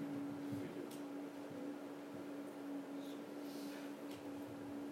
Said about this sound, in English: I can't help it, but every time that stinking refrigerator down there starts whining and hollering, I hear it.